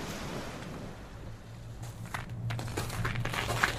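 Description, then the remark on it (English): Footsteps crackling on snow frozen by the cold, a series of crisp, irregular crunches that start partway through over a steady low rumble and wind-like hiss, as someone walks into the Bucky and District Fishing Heritage Centre. No one speaks. “It's so cold that the snow on the ground is frozen. It's crackling under my feet.”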